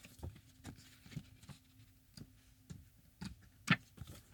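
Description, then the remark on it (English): A small paper booklet from a music album's disc jacket is flipped through, making a series of soft, quick papery flicks at an uneven pace, with one sharper snap near the end and no talking. “Here is me flipping through the little booklet.”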